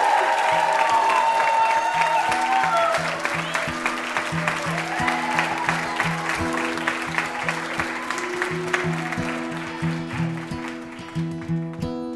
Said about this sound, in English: How about another round of applause for our VIP, Paul Feig.